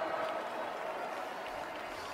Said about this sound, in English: Thank you for that tepid applause.